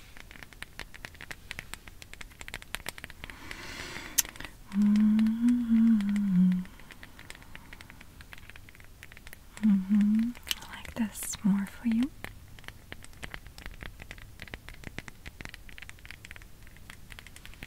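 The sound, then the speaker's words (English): Wooden bowls being handled and tapped, a steady scatter of light clicks, taps and soft scrapes throughout, with quiet whispered speech drifting in over them at moments. “Actually, I have these wooden bowls.”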